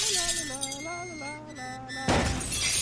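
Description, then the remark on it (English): A man's wavering, strained vocal cry gives way to a sudden, loud smash of a car window as he hits it with a spiked club, with glass crashing and shattering for the last second. “And he's smashing the windows with a spiked club.”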